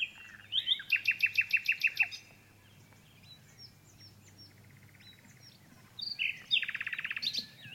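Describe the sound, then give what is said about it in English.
A nightingale sings with no voices: a loud burst of rapid, repeated chirping notes, then scattered softer whistles and trills, and finally another quick rattling phrase. “Can you tell us a little bit more about the duet with the nightingale and what that is like?”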